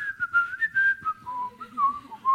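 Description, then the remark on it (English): A woman who had lost her singing voice whistles a wavering melody during a worship service, a continuous tonal line that slides and steps between pitches, moderately loud, with faint background sounds underneath. “She lost her voice. And so all she could do was whistle.”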